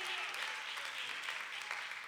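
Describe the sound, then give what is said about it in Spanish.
An audience applauds in a steady, dense wash of clapping that holds an even level throughout, with no distinct individual claps standing out and no voices clearly heard. The audience gives a loud applause to 'my King', God. “Alguien da fuerte aplauso a mi Rey con el corazón.”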